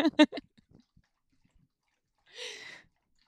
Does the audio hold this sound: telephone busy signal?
no